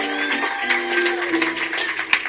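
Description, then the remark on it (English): A church audience claps for the choir, steadily in a dense, continuous patter, with sustained musical tones humming underneath and a sharper burst of clapping near the end. “Clap your hands for my choir.”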